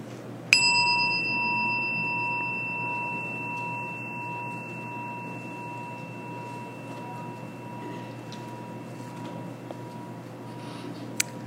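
signal or alarm, chime ringing

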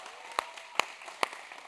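crowd, round of applause

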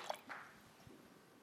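food or drink, sipping water

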